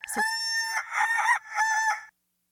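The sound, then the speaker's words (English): A single loud rooster crow played backward, its strained, warbling call running in three connected bursts before cutting off abruptly. No one speaks. “And here is the reverse rooster.”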